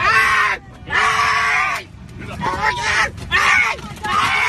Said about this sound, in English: But it was interesting, and it was probably one of the craziest sounding screams I ever heard in my life.